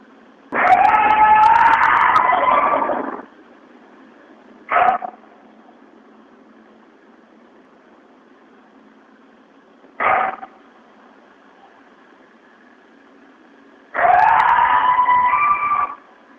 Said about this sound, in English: That one gave me legitimate chills. That one, actually, that kind of sounds closer to a coyote to me. Yeah. Also kind of sounds like a pissed off chihuahua.